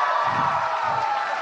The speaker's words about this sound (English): Why are y'all clapping? We all knew the answer.